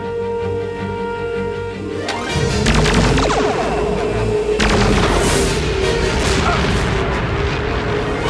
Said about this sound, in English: I guess I also mentioned the same thing with that gunfire, like those three shots. I'm like, I've heard those three shots